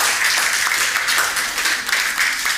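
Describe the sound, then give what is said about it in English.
A crowd applauds steadily as people are called forward, many hands clapping in a dense, continuous wash of sharp, bright claps with no pauses, holding a fairly loud, even level throughout. “Yeah, you can clap. You can clap.”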